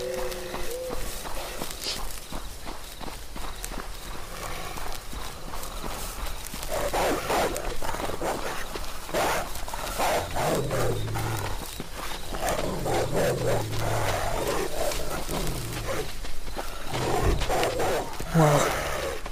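A wolf growls and snarls in repeated, rumbling bursts, mixed with scuffling footsteps and rustling movement throughout a tense, busy scene.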